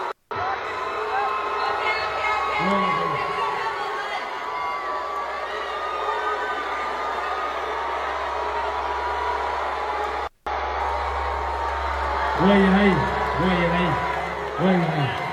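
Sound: crowd booing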